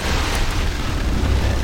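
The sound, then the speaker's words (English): A steady, heavy rumble from an earthquake attack cast by the character Minsk in a video game, deep and roaring with a noisy crackling texture, holding loud and unbroken throughout with no voices. “Why is Minsk causing more earthquakes?”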